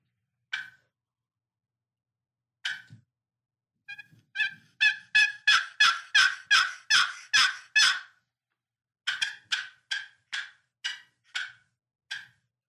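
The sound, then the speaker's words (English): Raspy turkey yelps worked on a box call: a few spaced single notes, then a quick run of about a dozen loud, scratchy yelps, a pause, and a slower closing series. No talking. “I don't have my mouth call. Somehow I had to use a box.”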